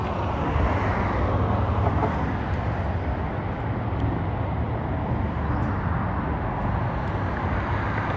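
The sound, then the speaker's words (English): A car's low, steady engine rumble fills the whole stretch, even and fairly loud, with no siren and no clear swell of a vehicle going by. No one speaks. “Don't tell me it's a cop car.”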